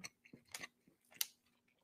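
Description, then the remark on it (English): Quiet, irregular chewing of people eating birthday cake pancakes from IHOP: soft crunchy clicks and wet mouth noises come in scattered bursts, with a couple of sharper crisp snaps. No one speaks. “It's so weird just sitting here eating with you all.”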